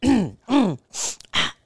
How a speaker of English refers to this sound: making all these noises, I'm coughing, trying to clear my throat.